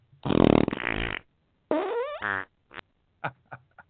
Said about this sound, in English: Y'all know I had to do the fart sound. I think it's funny.